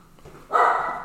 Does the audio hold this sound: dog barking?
yes